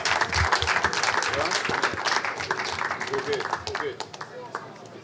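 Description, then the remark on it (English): A crowd at a party applauds two guests invited to come up, with dense, steady clapping and a few cheers and voices mixed in, holding loud for several seconds before thinning out toward the end. “So, huge these guys, round of applause, massive round of applause, please.”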